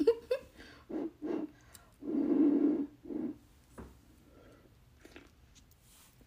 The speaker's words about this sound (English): One second. Let me sip the tea.